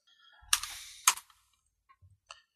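Three dice are rolled, rattling and clattering in two quick bursts, followed by a few faint settling clicks as they come to rest. No one speaks.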